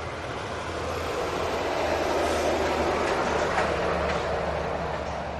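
A heavy logging truck carrying small logs rumbles past outside the Sham Shack with a loud, steady roar and low engine drone that swells slightly midway through, with no voices.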